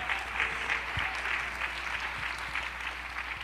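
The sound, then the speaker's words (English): A crowd claps steadily, producing a dense, continuous wash of overlapping handclaps with a slight rhythmic pulse throughout, fairly even in loudness and with no voices standing out. “Oh, come on, clap your hands unto the Lord today.”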